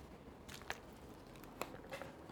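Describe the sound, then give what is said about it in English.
A quick swig of water: a few faint, wet gulping clicks spaced unevenly over a couple of seconds, quiet against a soft background hiss with no talking. “A swig of water.”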